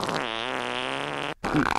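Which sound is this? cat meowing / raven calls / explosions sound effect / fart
fart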